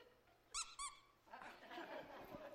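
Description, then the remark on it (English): Two sharp, high-pitched, loud squeaks from a toy lion squeezed in quick succession, instead of a roar, followed by a burst of laughter and chatter from children. “Are you guys going to squeak? Or are you going to roar”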